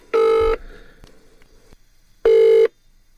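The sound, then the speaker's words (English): Two ringback tones from an outgoing phone call to Tuffers on Kelly's Heroes Lockdown, each a steady electronic burr lasting about half a second, separated by a long quiet gap with faint line noise and clicks. “Let's call you, mate.”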